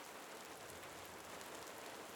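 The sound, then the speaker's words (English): Soft, steady rainfall patters continuously on a surface, a fine hiss of countless small drops with no voices, quiet and even throughout. “As this light rain continues, we are ending the episode here.”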